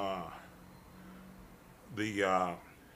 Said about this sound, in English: Bless you.